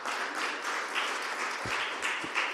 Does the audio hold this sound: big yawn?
no